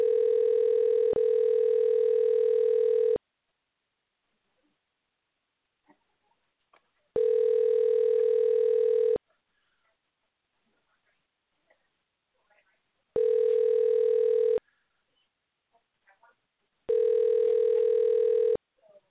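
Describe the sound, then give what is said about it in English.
A telephone ringback tone repeats four times, each steady electronic buzz lasting about two seconds with quiet gaps between, clear, as the phone call rings unanswered. “All right, well, didn't answer the phone, which kind of sucks”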